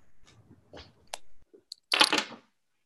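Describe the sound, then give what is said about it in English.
A deck of cards is shuffled: a few soft taps and rustles, then a loud, dense crackling riffle lasting about half a second before it stops. No one speaks. “While she's doing that, I'm just shuffling my cards.”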